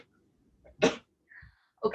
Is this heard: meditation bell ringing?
no